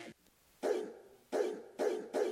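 A dog barks four times, loud, each bark a full, sharp burst, with the gaps between them shortening slightly toward the end. No one speaks.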